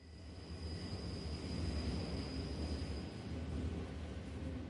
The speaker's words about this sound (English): After a few minutes, the next metro arrived, and I watched him enter it.